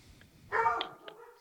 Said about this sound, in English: Oh, God. No. You fucking pissed those dogs off. I didn't realize that they were guarding the bunker door.